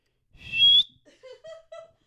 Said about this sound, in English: How did you learn how to do the Mexican whistle?